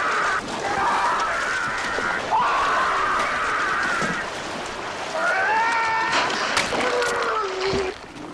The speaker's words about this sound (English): Because he's like having a higher pitched scream. Because he was talking about it's like so like brutal to hear.